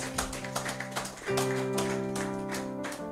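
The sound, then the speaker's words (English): An audience at a church service gives the Lord a clap of faith, clapping in a steady, repeated rhythm over sustained keyboard chords, which swell louder and shift to a new chord partway through. “Give the Lord a mighty clap of faith.”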